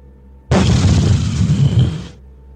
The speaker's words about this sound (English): Like in the distance, you hear this jet flies overhead. All of a sudden you see a giant fucking explosion in the center of this camp.